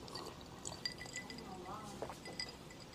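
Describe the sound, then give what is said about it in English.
Water pours into a glass, a steady trickling splash with a few light clinks, while voices murmur in the background. “It's a little water.”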